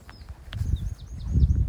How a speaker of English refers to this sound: I hope you enjoyed today's episode with the birds in the background, and hopefully the wind hasn't been too noisy for you.